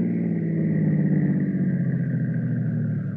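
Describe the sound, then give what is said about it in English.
A car engine rumbles with a steady, low droning hum that eases slightly toward the end as the car pulls into a garage to get gas. No voices. “the Jones' car needs gas. There was a garage on the way up. Ah, here it is.”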